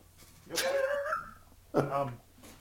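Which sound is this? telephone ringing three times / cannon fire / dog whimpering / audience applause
dog whimpering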